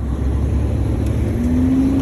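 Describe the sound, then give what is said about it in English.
A fire truck engine drones steadily while driving through a large fire under black skies, a deep, continuous rumble heard from inside the truck, with a faint whine rising toward the end. “This was the view from inside a fire truck.”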